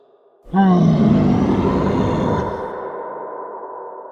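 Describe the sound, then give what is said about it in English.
A huge, deafening dinosaur roar erupts suddenly from near silence, rumbling low and harsh for a couple of seconds before trailing off into a long, fading growl. “Spying the pair instantly, the creature drew back its head and then leaned forward, unleashing an almost deafening and earth-trembling roar that sent vibrations through their very cores.”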